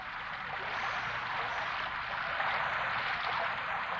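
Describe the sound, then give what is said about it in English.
Steady, dense hiss of rain, an even wash of pattering noise that holds a constant level for the whole stretch, with no voices or other distinct sounds. “That just sounds like rain.”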